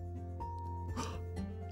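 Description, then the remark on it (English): A dog barks twice in quick succession inside a cave, the short rough barks echoing faintly over a steady, low musical drone; no one speaks. “They were very big because he was surprised to actually hear the sound of a dog in the cave.”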